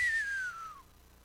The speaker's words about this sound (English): Because then everybody's like, "What? Why are they whistling?" Because it's serious.